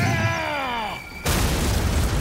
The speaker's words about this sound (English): The blast knocks Batman from his precarious perch, and he plummets into the black harbor below.